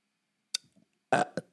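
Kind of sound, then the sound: human body sound, burp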